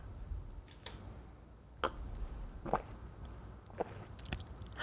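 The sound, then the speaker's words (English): Two quiet sips of liquid followed by several soft swallows, heard as faint wet clicks spaced roughly a second apart over a low background hiss, with no talking; a person drinks into a microphone with its gain turned up. “I take multiple swallows. Here, I'm going to turn up the gain on this microphone. Oh, shit. And take a sip of liquid here.”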